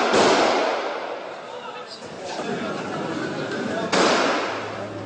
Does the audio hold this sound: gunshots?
yes